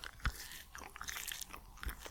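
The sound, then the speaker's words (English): Biting and chewing of a chili-seasoned meat stick: a sharp bite near the start, then steady wet, crunchy mastication with a second firm chomp near the end, no talking. “I don't know if it's going to be an audio experience, but here goes a stick now.”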